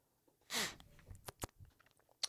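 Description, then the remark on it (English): A quick slurping sip from a drink, followed by a few soft mouth clicks and swallowing sounds, with no talking. “So, okay, let me take a sip.”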